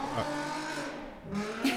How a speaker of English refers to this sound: Sorry, that was LaMelo's car drag racing past.